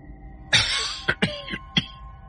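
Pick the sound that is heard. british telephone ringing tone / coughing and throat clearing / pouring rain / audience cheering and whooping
coughing and throat clearing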